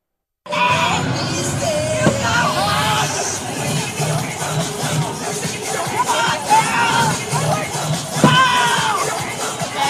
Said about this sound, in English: So a new internet video has been sweeping the nation. It's setting the internet abuzz, featuring a mother cheering on her daughters at a cheer competition. Let's take a look.